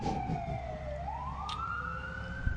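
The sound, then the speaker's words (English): An emergency vehicle siren wails steadily outside an open window, its pitch sliding down and then climbing again, over a low rumble of street traffic, with no one speaking. “There's a siren that lets you know you're listening to a genuine Radio Misterioso show.”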